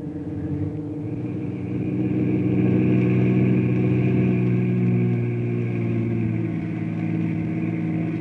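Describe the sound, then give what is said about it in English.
A car engine rumbles, swelling louder as the vehicle pulls up, then settles into a steady low idle with no voices. “You fellas wait in the car.”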